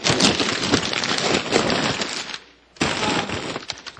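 Gift wrapping paper being torn off a present, a dense, crackling rip that runs for a couple of seconds, pauses briefly, then tears again with loud crinkling.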